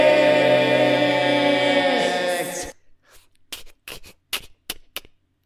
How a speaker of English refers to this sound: Was that stabbing sound? That is stabbing sound. All right, so sound like a cat.